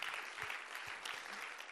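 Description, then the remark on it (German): A crowd in Lucerne applauds steadily, a dense wash of many hands clapping at an even level throughout, with no voices standing out above it. “Lass uns ihnen doch einfach einen herzlichen Applaus geben.”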